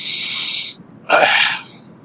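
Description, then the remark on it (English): A loud, self-satisfied sniff through the nose: a long airy hiss, a brief pause, then a second sharper breathy burst that trails off. No one speaks. “Yeah, self-satisfied sniff for you there, SSS.”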